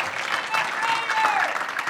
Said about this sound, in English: Come on, let's just give the Lord one more hand clap of praise. He's worthy, amen? He's worthy.